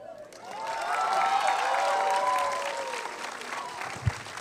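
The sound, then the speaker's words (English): Sustained audience applause, a dense crackle of many hands clapping at steady loudness for several seconds, with a few excited voices and whoops rising through it and a brief thump near the end. The theatre audience is applauding actor Elsie Fisher at a Landmark Theatre Q&A after a screening of the film Eighth Grade. “Keep the applause going for the only person it really should be for, the coolest girl in the world, Elsie Fisher.”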